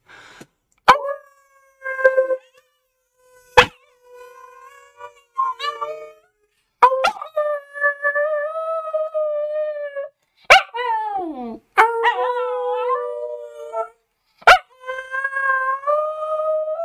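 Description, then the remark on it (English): A small dog lets out a series of drawn-out, wavering howls, wolf-like in tone, broken by brief pauses and a few sharp yips, with no talking. “Good boy. I just have a tiny wolf.”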